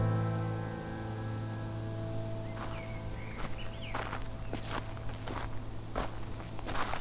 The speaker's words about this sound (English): Phoebe saw Dr. Bear walking across the driveway.